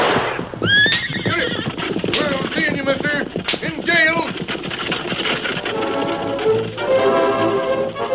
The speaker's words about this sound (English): Now whip up them horses, driver, and don't look back.